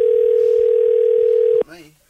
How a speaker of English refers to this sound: Hang on. It's ringing, guys.